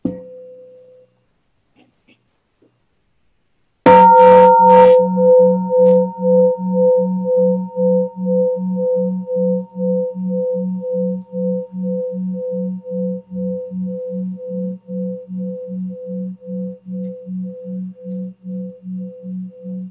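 A single bell is struck, giving a bright metallic onset, then a deep, long-sustained hum that slowly fades with a steady wavering pulse. No voices are heard.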